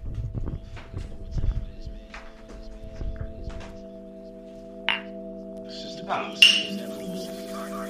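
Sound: glasses clinking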